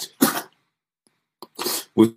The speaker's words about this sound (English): Sorry guys, I'm sneezing a little bit. It's because I've actually just landed in Melbourne and I have absolutely no idea what the time is, and my head is just decompressing from London, Colombo and Melbourne.